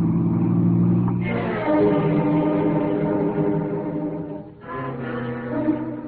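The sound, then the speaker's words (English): A car engine accelerating on a highway, its loud droning whine climbing in pitch, dropping back and surging again as it shifts through the gears, with no voices over it. “He's speeding up.”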